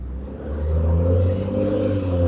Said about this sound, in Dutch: Oh, daar is de bus.